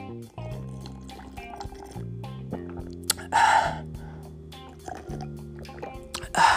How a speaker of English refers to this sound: Let me sip on some of this water. Hold on.